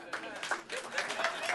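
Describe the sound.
Scattered audience clapping in answer to a speaker's question, fairly sparse and tentative, a steady patter of hands at moderate volume with some voices murmuring underneath.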